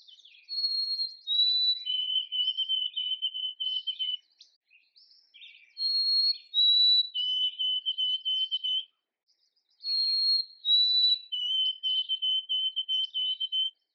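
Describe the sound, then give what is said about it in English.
A white-throated sparrow sings three times, each song a clear, pure whistle opening on a couple of high notes and dropping into a long, wavering held tone. Loud, with short pauses between songs. “Another interesting study that Dr. Falls initiated in 1963 was to study the songs of white-throated sparrows.”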